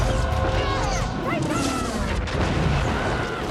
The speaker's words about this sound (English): Awesome cannons. Cannons!